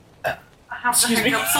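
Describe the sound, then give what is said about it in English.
A single short, sharp hiccup, followed by a longer voiced, throaty sound that could be read as a burp. “I have to hiccup a little bit.”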